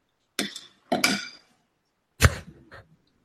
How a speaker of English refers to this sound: What did he just like make pasta? What happened here? I think he just slapped a spoon or something. Yeah, no, I've been in Italy for too long. I literally just thought, where's the pasta? When I heard a spoon.